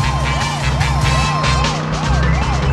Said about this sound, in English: I'll put on the siren and ride ahead of you.